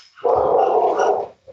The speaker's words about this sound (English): So it sounds like the attack dogs are holding off the local police there. Yeah, apparently they're holding off the mailman. It's a ritual here every day.